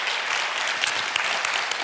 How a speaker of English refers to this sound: Give those ladies a round of applause this morning.